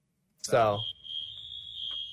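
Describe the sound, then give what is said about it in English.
A fire alarm sounds as a steady, piercing high-pitched tone that holds without a break, following a short burst of a man's voice at the start, with faint low rumble underneath. “So anyway, dude, I'm going to continue with this while this alarm's going off in the background.”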